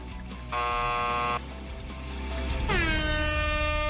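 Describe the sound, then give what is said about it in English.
A timer alarm blares during a trivia quiz with a harsh, horn-like tone: one loud buzzing blast, a short pause, then a second long blast that swoops down in pitch and holds. No one speaks. “I thought that was Jason's timer.”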